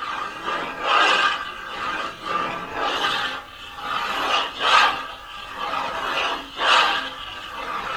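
A pencil moves in figure eights over a thin piece of plywood on a standing easel in an artist's studio, in a steady, looping rhythm, each stroke swelling into a soft raspy scrape, roughly one every second, with no voices.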